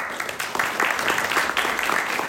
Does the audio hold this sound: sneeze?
no